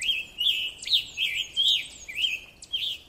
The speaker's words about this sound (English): That includes one of my favorite migrating birds, the scarlet tanager.